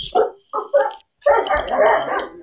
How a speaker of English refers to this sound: Uh-oh, my dog's crazy. My dog's about to go crazy. Uh-oh. Yeah. Wow. It's tripping.